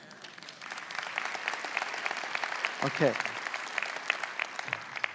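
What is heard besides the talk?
audience applause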